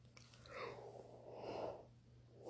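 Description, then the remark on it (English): A drawn-out yawn from someone not yet fully awake, breathy, sliding through an open-mouthed sigh that swells and fades over a couple of seconds, with a soft low hum underneath and no talking. “As I'm yawning, you can tell I'm not all the way up yet.”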